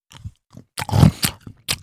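A person eating: wet chewing and crunching sounds, several irregular bites and mouth noises in quick succession, loud and intimate with brief pauses between them and no talking.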